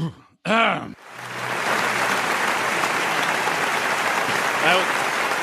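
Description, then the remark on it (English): An audience claps steadily in a dense, sustained wash of applause, preceded by a brief throat clearing; the clapping holds loud and even throughout. “Can we please stop the clapping? Can we stop the goddamn clapping?”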